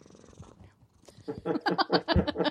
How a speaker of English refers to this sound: You've got a happy cat. Oh, yeah. I heard him purring there.